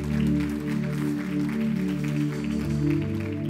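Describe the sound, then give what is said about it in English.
An audience claps hands in the morning to rejoice in the Lord, a steady, continuous patter over sustained musical chords, the clapping holding at an even, fairly loud level throughout with no talking. “Clap your hands and rejoice in the Lord this morning.”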